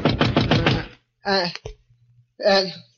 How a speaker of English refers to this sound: Then I fell into a deep sleep, and then a knock on the door wakened me.